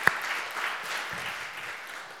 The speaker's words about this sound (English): And I want to give God a praise, a clap of praise for that.